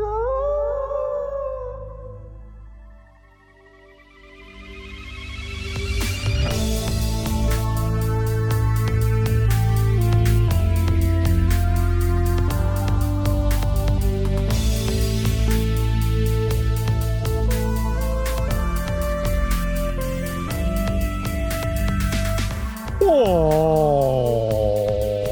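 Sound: voice imitating whale calls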